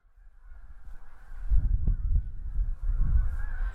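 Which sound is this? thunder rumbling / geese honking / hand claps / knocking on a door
geese honking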